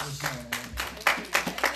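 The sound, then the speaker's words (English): An audience claps their hands in a loose, uneven burst of applause during a church worship service, moderately loud, with faint voices murmuring underneath. “And the church said amen, amen, amen, and amen, and give God a good hand clap.”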